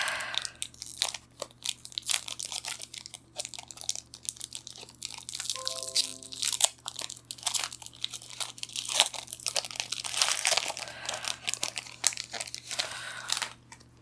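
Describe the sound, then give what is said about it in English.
Foil wrappers of trading card packs crinkle and tear as two packs are opened, a long run of sharp, papery crackles and rips, loud bursts coming in uneven clusters over a steady low hum, with no voices. “Let's open packs 120 and 21.”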